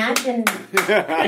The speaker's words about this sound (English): Like, was that a dude clapping?